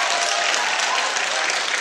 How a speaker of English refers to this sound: Thank you very much. Clap for him.